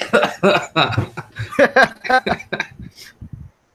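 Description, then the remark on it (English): A series of harsh coughs from a man in quick bursts, mixed with chuckling, tapering off into quieter, softer coughs toward the end. “I don't know who he's coughing at, but...”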